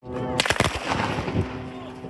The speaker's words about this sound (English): Moments later, cameras capturing that gunfire,